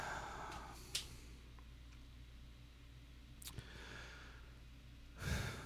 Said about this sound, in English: And then I died. Just one exasperated gasp. And then I died.